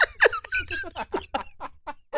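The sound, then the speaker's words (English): A cat attacking a cardboard box, heard as a rapid string of about ten short, high squeaky scrapes and rubs, moderately loud, with no one talking. “Okay, I need 1 second because my cat has decided to attack this box.”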